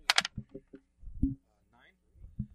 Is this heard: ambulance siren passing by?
no